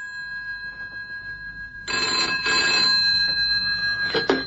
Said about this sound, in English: Look, did you ring the office and give them your number? Of course I did. That's why I'm ringing your phone box.